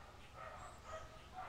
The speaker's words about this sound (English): The dogs have started. Yeah, the dogs have started barking. I don't know if they're just walking by. Anyway, we'll see how long this lasts. I don't think they'll be that long.